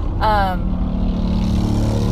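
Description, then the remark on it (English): A loud motorcycle engine roars with a brief rising whine near the start over a steady low rumble as the rider passes, trying to get around. “That's a very loud motorcycle. This person is trying to get around us.”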